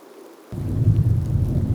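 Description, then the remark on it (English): After a brief quiet moment, a deep rolling rumble of thunder bursts in and keeps growling loudly, with a steady wash of rain hissing underneath. No voices. “I fear thunderstorms because I cannot control them.”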